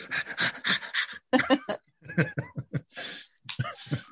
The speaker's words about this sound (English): Heavy breathing. Here we go.